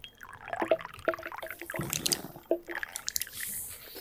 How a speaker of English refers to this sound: Let me just have a sip of my coffee.